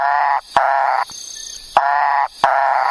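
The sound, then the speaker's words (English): A Macaya burrowing frog gives four loud, raspy, nasal calls in a steady rhythm, each about half a second long, over a constant high-pitched insect hiss. “Okay, yeah, we also found the Macaya burrowing frog.”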